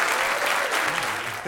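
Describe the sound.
Sustained audience applause for jazz musician Chick Corea, a dense crackle of many hands clapping at steady loudness, with a hint of voices mixed in as it begins to fade at the end.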